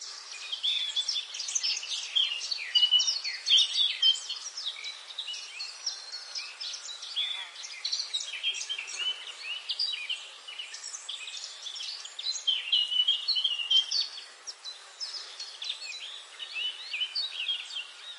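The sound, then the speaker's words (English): Many birds, sparrows in the trees on a sunny morning, chirp and tweet together in a busy, continuous chorus, with overlapping high calls spreading across the whole stretch at a steady, moderate loudness and no voices. “One sunny morning, could be heard as Charlie set off on his cheerful adventures. He waved hello to the sparrows”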